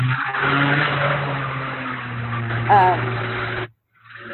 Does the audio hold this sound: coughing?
no